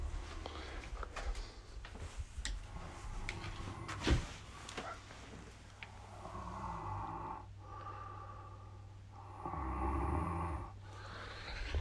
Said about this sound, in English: There's some snoring actually happening in the background. Well, we did do a red eye last night.